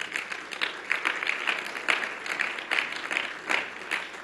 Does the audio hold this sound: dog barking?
no